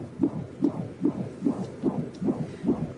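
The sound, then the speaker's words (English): A rapid, steady whooshing pulse from a baby's heartbeat picked up by a Doppler monitor that a sonographer places on a pregnant woman's belly, about two beats per second, each a muffled swishing thump, clear with no voices. “Then the sonographer puts the Doppler on her belly. And the sound of the baby's heartbeat is resounding in the room, just like this.”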